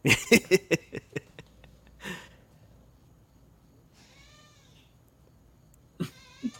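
A cat meows in a drawn-out, rising-and-falling call, preceded by a few sharp knocks and a breathy burst, with another short sound at the end. Clear, no talking.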